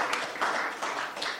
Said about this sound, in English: You see the way they are clapping for you.